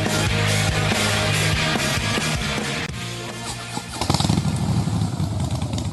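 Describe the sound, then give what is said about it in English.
A Harley-Davidson motorcycle engine revs loudly with a deep, rumbling throb, dips briefly, then roars back up into a rough, sustained growl. No one speaks. “Who needs a rever? For Harley Heaven, the Harley Davidson Pan America is coming to Harley Heaven in Melbourne, Dandenong and Ringwood.”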